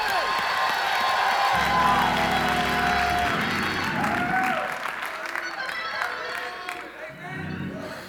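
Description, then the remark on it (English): An audience breaks into loud clapping and shouting, a dense crowd roar with cheers and whoops that swells for several seconds, then thins out as scattered voices trail off. “Somebody give him three claps and a shout.”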